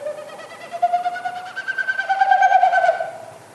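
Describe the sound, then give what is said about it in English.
A bird's courtship tail-feather winnowing, made as each wingbeat pushes air through its stiff outer tail feathers: a hollow, rapidly pulsing woo-woo-woo tone that swells and rises over a few seconds, then fades, heard alone overhead against a quiet outdoor background. “So each time they flap their wings, it pushes air through the stiff outer tail feathers, and it makes that woo, woo, woo, woo, woo kind of sound.”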